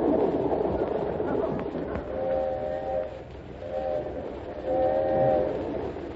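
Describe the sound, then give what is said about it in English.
The 20th Century train, nearing New York, rumbles steadily and loudly along the rails, while three sustained horn blasts sound over the rolling noise; no one speaks. “Jack Benny hasn't arrived yet, but we have finally located him on the 20th Century train, nearing New York.”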